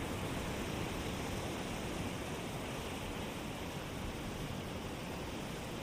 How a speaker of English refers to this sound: Watching the water come into the shore and then recede.